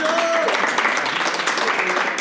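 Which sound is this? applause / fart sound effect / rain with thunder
applause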